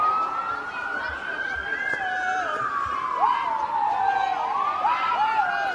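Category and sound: vehicle, ambulance siren passing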